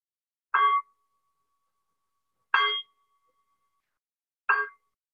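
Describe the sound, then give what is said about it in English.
A meditation bell is struck three times, about two seconds apart, each strike leaving a soft, steady tone hanging in otherwise silent air. “We'll ring the bell in about 25 minutes.”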